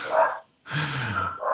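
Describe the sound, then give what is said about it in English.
Dogs bark in short bursts, a sharp bark, a brief pause, then a longer rough, growly bark followed by another quick yelp at the end. “I'm going to fucking kill these dogs.”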